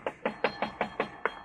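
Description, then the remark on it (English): Seven quick, evenly spaced knocks on an apartment door, fairly loud, each a sharp hollow rap with no voices around them. “I mean, if he answers it, he'll probably answer your knock, too.”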